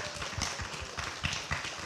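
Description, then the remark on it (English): A church audience applauds to honor the fathers present, many hands clapping together in a dense, even patter with a few sharper claps standing out, fairly soft overall and without speech. “Can we give a round of applause to them all?”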